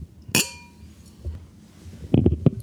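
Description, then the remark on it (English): A single bright glass clink rings out clearly as juice-glass-size glasses of red wine are tapped together in a toast in a hotel, its tone lingering briefly before a few soft, muffled knocks near the end. “Chin chin.”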